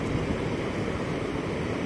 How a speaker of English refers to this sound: I encourage you to listen to the sounds of nature. Listen to the sounds of the waves roaring.